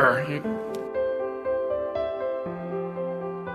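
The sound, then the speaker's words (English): A man briefly imitates a rough, throaty growl right at the start, illustrating the Hebrew word na'ar, meaning to shake, scatter or growl; then steady instrumental music with a soft rhythmic pulse takes over for the rest. “You know, let me practice the growl part.”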